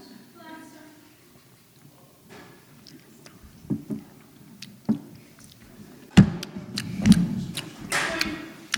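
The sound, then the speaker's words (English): Plastic cups of coffee beer knock together in a toast, a scattered series of dull, short taps and clacks at irregular moments, with murmuring voices underneath. “Everyone clink. I mean, your plastic glasses, so.”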